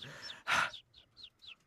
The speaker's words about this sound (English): You hear that? It's the birds. The birds.